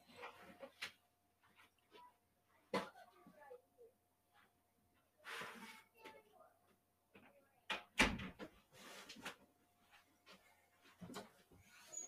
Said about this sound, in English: Let me close this door real quick.